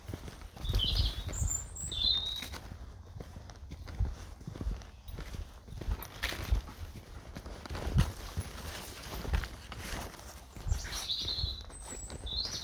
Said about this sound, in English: Yeah, that bird song.